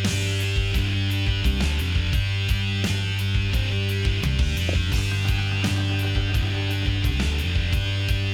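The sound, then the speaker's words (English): A loud 1993 alternative rock song drenched in heavily distorted guitars, a thick sustained wall of fuzz over steady pounding drums, playing continuously with no voices. “that distortion just like it just goes on for days.”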